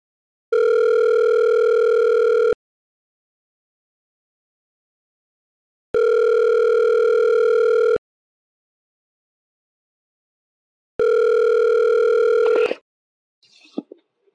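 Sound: telephone tone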